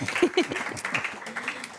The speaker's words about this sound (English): Let's give a round of applause for them getting through the lightning round.